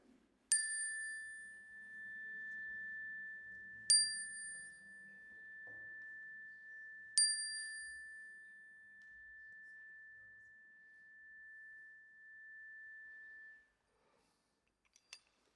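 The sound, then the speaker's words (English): A bright chime is struck three times at slow, even intervals in a sanctuary, inviting the sharing of joys and concerns, each strike leaving a long, clear ringing tone that sustains and slowly fades. “And so I invite you now at the sound of the chime to share those joys and concerns into our sanctuary.”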